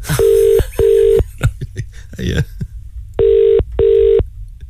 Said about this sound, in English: First random number ready, here we go. I'm going to hit dial, and it's ringing.